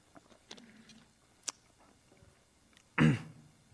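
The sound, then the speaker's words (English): A few faint mouth clicks and small wet sounds, then one short, louder gulp as a preacher swallows water during a sermon, with no talking. “So, let me get a drink of water.”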